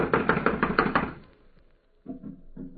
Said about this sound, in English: It's locked. From the inside. Well, someone is definitely in there. I'm going to knock. Now listen closely.